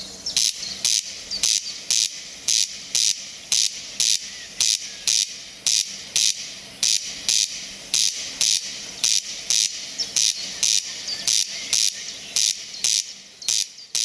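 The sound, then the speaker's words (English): A corncrake calls over and over, a dry, rasping double note repeated in a steady rhythm for the whole stretch, loud and grating against a faint hissing background with no talking. “But this is what the corncrake, one of the birds we were discussing before the break with Niall Hatch of Birdwatch Ireland, this is what the corncrake sounds like.”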